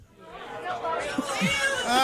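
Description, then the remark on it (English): Office party crowd chatter as people arrive: many overlapping voices blend into a steady, rising babble with no words standing out, growing slightly louder across the two seconds as more people seem to join. “Keep the crowd's filing in as we speak.”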